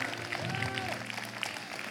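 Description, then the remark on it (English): An audience claps steadily for a couple of seconds for a keyboard player, a dense, even patter of many hands, with a brief tonal whoop or voice rising over the applause. “You can clap for him.”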